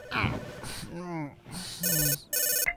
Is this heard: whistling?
no